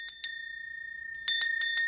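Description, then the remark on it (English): An old, disused bell hanging in Scrooge's room swings and rings: two bright strikes, a lingering metallic hum, then a quicker, louder burst of clangs in rapid succession. “As he threw his head back in his chair, his glance happened upon the bell that hung in the room.”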